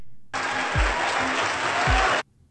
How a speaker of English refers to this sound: And listen to the applause.